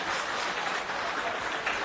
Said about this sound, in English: Okay. So let's give a round of applause to four members of your community who helped us set the scene.